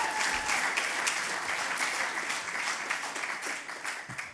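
Steady audience applause from many hands, a dense crackling patter that holds fairly loud for the whole stretch with no talking over it.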